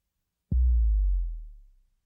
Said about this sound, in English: You can record and add different effects to individual drums on individual tracks. On this pattern on track 1, we have a kick drum, taken from an entire voice of kick drums.